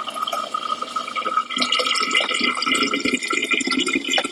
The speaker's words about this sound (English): And I'm refilling from a larger container into a smaller container.